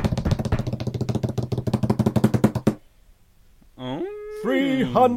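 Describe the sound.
A rapid, steady rattling drum roll, seemingly imitated by a voice, lasts under three seconds, then a short pause and a brief voiced, sung-sounding flourish to finish.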